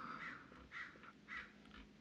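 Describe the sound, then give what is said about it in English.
A crow caws several times outside in a steady series of harsh, raspy calls, each about half a second apart, fairly faint, with no talking. “Sounds like you got a sounds like you got a crow yakking at you over there.”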